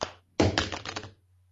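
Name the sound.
coin toss landing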